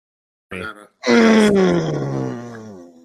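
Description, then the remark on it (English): A short grunt, then a long, loud, strained groan that slides downward in pitch and fades slowly, a deep voiced vocal effort sound with no words. “As I hear the terrible grunts.”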